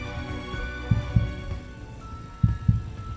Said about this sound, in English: His heart pounded so hard, he could hear it.